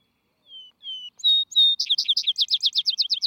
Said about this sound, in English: Not in meadows or orchards, but in high, breezy pasture grounds will you look for him. His song is most notable after sundown, when other birds are silent, for which reason he has been aptly called the Vesper Sparrow.